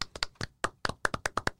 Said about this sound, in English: Giovanni Urshela did not get his own PPP last season. Has his own this year. And for that, I'm going to clap a little.